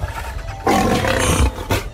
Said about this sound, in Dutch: Een leeuw. En die leeuw, die heeft zo te zien ook wel honger.